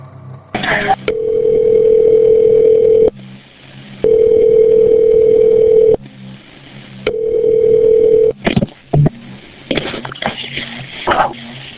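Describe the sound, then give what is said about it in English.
A phone line rings out as a 911 call-back is placed to a caller's phone: three steady, buzzing ringback tones of about two seconds each with short gaps, followed by clicks and a burst of line noise as the call connects. “let's listen to the last call that was made from 911 back to Neil's phone”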